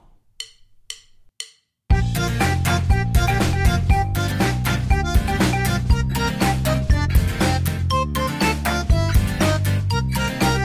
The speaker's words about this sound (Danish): Nu skal vi altså i gang. Her kommer vores lækre, lækre jingle.